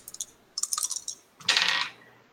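Dice clatter in a quick burst of sharp clicks, then rattle briefly across a table, fairly loud, with no voices.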